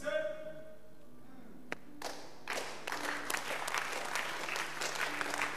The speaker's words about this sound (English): Oh, the way you are clapping, I don't understand.